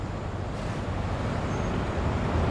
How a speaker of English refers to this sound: we're at 174th Street and the Grand Concourse overlooking the Cross Bronx Expressway. It's just after 5 p.m., so it's rush hour. You can hear the cars in the distance, all trying to move to their respective destinations. It's pretty loud out here.